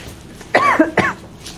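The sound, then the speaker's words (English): Two quick coughs in succession from a speaker during a school committee meeting, harsh and fairly loud, followed by quiet background with no talking. “For the school committee calendar, I'm wondering if, sorry, I'm about to cough, so I'm trying to hold it back.”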